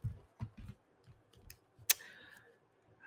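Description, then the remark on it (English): Quiet brush pen strokes writing on notebook paper: soft taps and light scratching, then one sharper scrape that trails off into a brief squeaky stroke. There is no talking. “So this particular brush pen can bleed if you don't use it on the right paper.”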